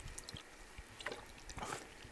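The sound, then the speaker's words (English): A quick sip from a drink: a few soft, wet slurping and gulping sounds, quiet and brief, with no one talking. “I'm going to take another quick sip.”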